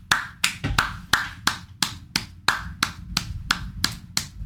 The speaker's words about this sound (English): Slow clap for that, man.